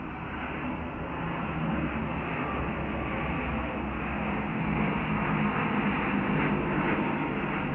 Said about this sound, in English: And a surprise airplane. I'm sorry, it's nice outside. I just want to record outside in the sunshine.